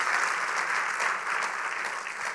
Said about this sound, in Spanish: ¿Cuánta gente aquí está dispuesta a servir a su prójimo? A ver, demuéstrenlo dando un aplauso al Señor.